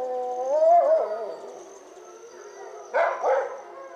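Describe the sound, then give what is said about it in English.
A captive-bred wolf dog at a wolf sanctuary in a steep mountain canyon in northern Colorado lets out a wavering, drawn-out bark-howl, trailing off before two sharper, barking yowls burst in near the end, with no talking. “You can hear one of these wolf dogs sort of bark howling.”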